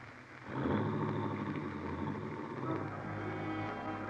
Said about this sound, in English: You watch Helen's car slip quietly down the road.